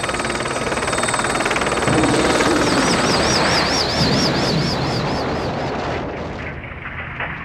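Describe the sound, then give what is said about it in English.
A loud, dense mechanical roar with a steady throbbing beat from a helicopter hovering low over a roof, swelling and then easing off slightly toward the end, with no voices. “That chopper's about ready to take the roof off.”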